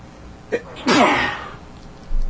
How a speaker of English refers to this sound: Wow, I had to sneeze there. Sorry about that.